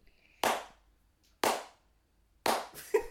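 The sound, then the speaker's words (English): Slow, deliberate, condescending hand claps from a man after a woman sings opera, about one per second, each sharp and ringing out briefly before the next, with a couple of quicker claps at the end and no talking. “So she sings some opera and he loves it and he claps.”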